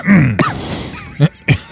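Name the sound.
coughing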